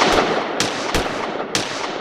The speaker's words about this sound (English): "They're coming," he shouted, above the echoing of the thunderous gunshots.